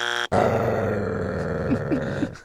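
A brief tonal blip, then a loud, rough dog growl, played as a sound effect for an incorrect answer, rumbling steadily for about two seconds with a few gravelly bursts near the end, with no talking.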